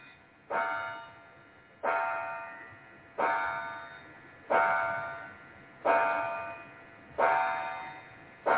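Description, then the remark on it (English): A parlor clock chimes six evenly spaced, resonant strokes, each ringing and slowly fading before the next, clear with no talking over it. “There's the parlor clock.”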